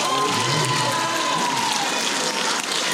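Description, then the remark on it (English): An audience at a conference applauds in a steady, dense wash of clapping that holds at an even loudness for the full three seconds, with no talking over it. “So let's give a round of applause to him.”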